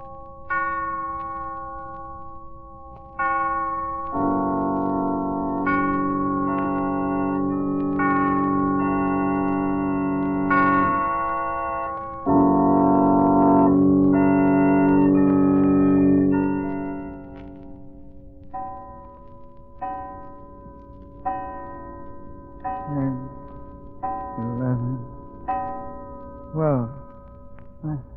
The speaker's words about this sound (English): He'll rise from bed in a hypnotic state, dress and start for a walk just as the clock strikes midnight. Listen, it's midnight now.